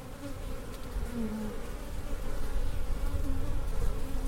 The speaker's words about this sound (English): Yes. A lot of bees swarming. I'm at Hunter's Honey Farm out in Martinsville, Indiana, and I'm surrounded by bees.